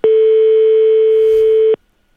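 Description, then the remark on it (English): A single loud, steady electronic telephone ringing tone on an outgoing call from a radio station in Dublin, Ireland, to a doughnut shop, holding for under two seconds before cutting off into silence. “if we give them a quick call. Okay. And see now, who we get through to, okay?”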